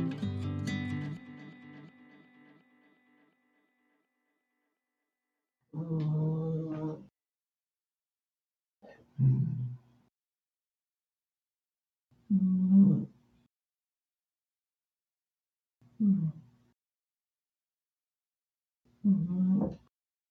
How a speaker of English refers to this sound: Is that your cat? Yes. Can you hear her snoring? Yes. Oh my god.